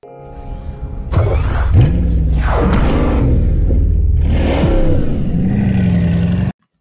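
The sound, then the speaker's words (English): A Bugatti Chiron sports car engine rumbles loudly, revving up and down several times in rising and falling surges over a deep, steady growl before cutting off abruptly. “In the video, you notice the rumble of the engine, which sounds like a grumpy dragon waking up from its nap.”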